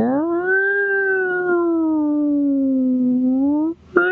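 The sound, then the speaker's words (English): A single voice imitates an ambulance siren wail, holding one long, loud tone that rises slightly, then slowly sinks and climbs again over several seconds before cutting off abruptly. “I don't know if you've ever been rescued by an ambulance that you can see coming for 15 minutes.”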